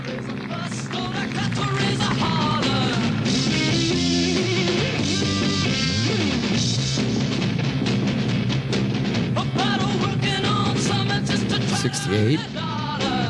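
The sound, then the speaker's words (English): Heavy, aggressive late-1960s rock plays loud and unbroken, with dense distorted guitar, pounding drums and a thick low end driving steadily throughout, with bending melodic lines riding on top. “Because it kind of had that sort of aggro sound.”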